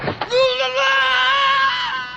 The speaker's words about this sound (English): The scream is so good. The best. This is so great. You don't see it coming.